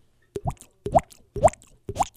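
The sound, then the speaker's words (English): A voice imitates the drip of rain leaking into an office with four evenly spaced mouth plops, each a quick hollow pop that rises in pitch, about half a second apart with no talking. “John, and your road's closed off, and I go to my office to get some stuff, and I hear this drip.”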